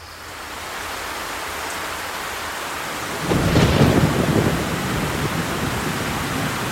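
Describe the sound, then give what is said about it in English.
Steady, heavy rain pours down as a dense wash of noise, then a deep rumble of thunder swells up about halfway through and lingers under the downpour. “I never thought I could drown standing up. Aw, this ain't nothing but a shower.”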